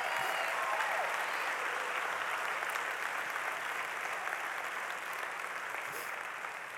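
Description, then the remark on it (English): An audience claps steadily and densely in praise of the Lord, a continuous wash of many hands that holds at an even loudness for several seconds before easing slightly toward the end, with no clear speech. “Come on, give the Lord a clap of praise.”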